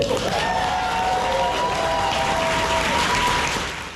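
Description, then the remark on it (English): A large crowd of spectators, including many Wisconsin youth, bursts into loud, sustained applause after Governor Tony Evers vetoed a bill. Dense clapping with some cheering and whistles mixed in, fading slightly at the end. “A crowd of spectators, including a number of Wisconsin youth, broke into thunderous applause after Governor Tony Evers vetoed the controversial bill.”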